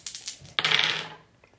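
dice being rolled

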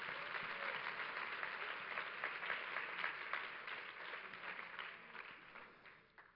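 audience clapping hands

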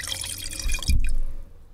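liquid pouring

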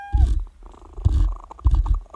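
cat purring

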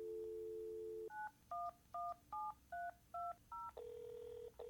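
telephone dialing tones

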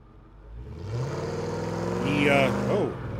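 car engine revving

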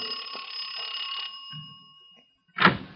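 doorbell ringing

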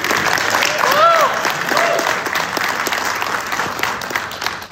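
audience applause

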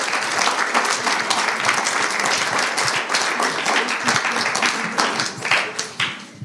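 audience applauding

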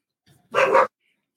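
excited dogs barking

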